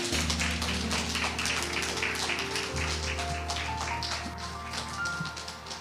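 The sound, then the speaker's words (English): A church audience claps steadily and loudly for several seconds in praise to God, the dense patter of many hands layered over sustained low organ or keyboard chords, with no one speaking. “Can we just give God another hand clap of praise?”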